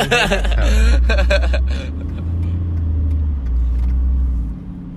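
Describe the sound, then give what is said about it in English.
A car drives in heavy traffic with a steady, loud low rumble of engine and road noise throughout. A brief muffled voice is heard near the start before the drone continues alone. “Thick of the old traffic down here.”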